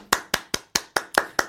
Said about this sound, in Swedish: Ja, en liten, kanske en liten applåd, grattis. Ska jag göra den? Ja.